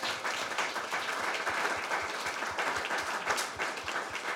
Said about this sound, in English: And since y'all love clapping so much, one more round of applause for Adam Weigel from Bootstrapper Studios.